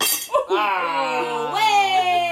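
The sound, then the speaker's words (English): A voice imitates a bottle smashing: a short, hissy crash-like burst, then a long, steady, ringing vocal tone that shifts to a higher pitch partway through and holds until the end. “Yeah, the … album. Bottle smash.”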